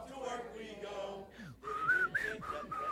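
A person whistles a short, wavering tune of a few breathy notes, preceded by a brief stretch of sung or hummed voice.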